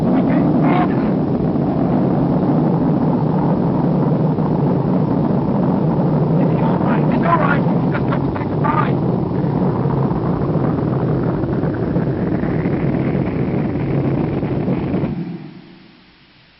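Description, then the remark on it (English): Spaceship rocket motors roar during a launch in a loud, steady, rumbling blast that holds for about fifteen seconds, with a rising whine partway through, before quickly fading out. “Motors. We haven't reached escape velocity. We'll drop back to the surface.”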